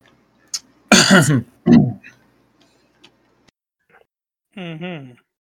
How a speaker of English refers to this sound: Any awkward coughing is approved right now.